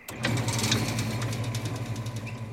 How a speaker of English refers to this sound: 11 p.m. on a Friday night, the West Elk Mine opens its gates. Cars and trucks start rolling out.